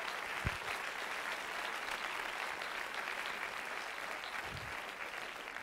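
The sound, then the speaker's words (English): A large crowd claps their hands one more time, a dense sustained wash of many hands applauding together without pause. “If you believe that, why don't you clap your hands one more time?”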